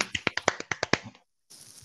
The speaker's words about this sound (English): I'm getting a clap right now, see?